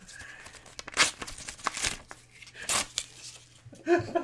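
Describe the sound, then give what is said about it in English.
A paper envelope being torn open in a studio, in several loud, ragged ripping bursts mixed with crinkling, spread unevenly across a few seconds with brief quiet gaps. “The studio's littered with envelope paper right now.”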